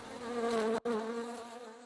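A dense, droning buzz of a swarm of bees, loud, holding steady for a couple of seconds with a momentary cutout partway through.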